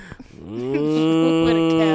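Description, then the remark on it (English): A single long, loud cow moo rises in at the start and holds steady to the end, droning, with a few faint clicks just before it. “What a cow.”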